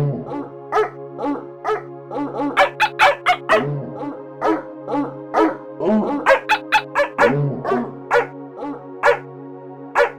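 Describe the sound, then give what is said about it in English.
A dog's barks and yips are arranged into a bouncy melody over a steady synth drone, the short barks popping out in quick rhythmic bursts like notes in a tune. “And finally, the emotional dog and synth.”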